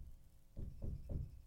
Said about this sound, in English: Hang on. Do you guys hear that knocking? So I'm in studio and it's a Sunday.